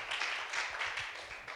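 A crowd applauds steadily, many hands clapping together in a dense, continuous patter that holds at an even, moderate loudness for the whole stretch, with no voices over it.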